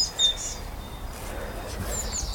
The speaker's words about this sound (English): Blue tit.